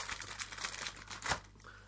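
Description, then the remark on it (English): Crinkling of biscuit packaging as biscuits are taken out, a steady run of irregular crackles and rustles with one sharper crunch near the end, fairly quiet overall. “We're getting the biscuits out. I hate it rustling.”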